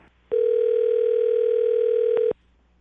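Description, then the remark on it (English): A steady, unbroken telephone dial tone, heard while a call is being placed, hums at a single mid pitch for about two seconds, loud and clean, then cuts off abruptly, with only faint background noise before and after. “I misdial numbers all the time.”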